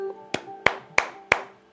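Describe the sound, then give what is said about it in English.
Four sharp hand claps in an even, steady rhythm, each crisp and bright with a quick decay, over a faint tonal hum in the background, clapping back the rhythm of the phrase "skillet cornbread" in the Clap It Back rhythm game. “For example, if I say, skillet cornbread, you would clap...”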